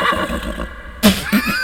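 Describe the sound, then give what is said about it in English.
A horse whinnies from some distance away, a wavering, high neigh with a sharper burst partway through, heard on its own with no talking. “Nope, but you do hear a horse sound off in the distance.”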